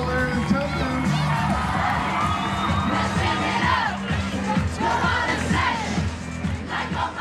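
A large crowd in a hall roars and cheers continuously as the Camogues team comes in and processes up to the stage, with shouts and whoops rising over a dense, loud wall of voices that holds steady throughout.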